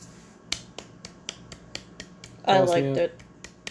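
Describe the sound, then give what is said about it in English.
Faint, half-hearted hand clapping, sharp thin claps in a steady quick rhythm, roughly four per second, with a brief voice sounding over them partway through. “I thought I was Bosnia clapping for a second. It sounded so pitiful.”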